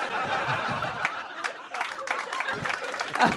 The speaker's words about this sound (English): Why are you clapping that?